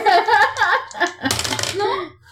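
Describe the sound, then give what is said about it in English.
Voices talk, then a brief clatter of dice tumbling across a hard surface lasts about half a second before the voices continue. “The dice took pity.”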